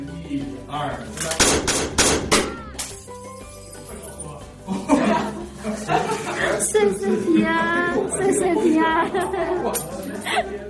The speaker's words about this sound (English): You still won't be getting much sweet talking from me, but I would now add some ceremonial stuff, such as setting off firecrackers, to create an auspicious atmosphere before we start each of our construction projects.